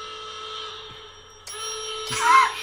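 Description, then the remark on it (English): A hotel desk bell rings with bright metallic dings, struck again twice in quick succession, each strike adding to a sustained, shimmering ring. It sounds clear, with no talking. “quickly go on Google and find just a hotel bell or like a find a soundboard.”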